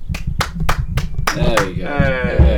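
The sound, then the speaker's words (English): Six or so sharp, evenly spaced claps ring out in a steady rhythm, applause for a restored microphone, then a voice joins in and carries on over the tail of the brief applause. “Round of applause for the...”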